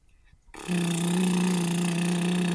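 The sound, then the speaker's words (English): A boat pulling up to a dock: after a moment of quiet, a loud, steady low drone with a buzzing, harmonic-rich edge starts abruptly and holds unbroken for about two seconds. No one speaks. “It sounds like a boat coming up to the dock.”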